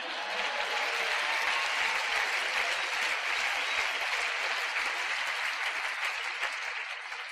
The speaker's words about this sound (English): Now you can applause.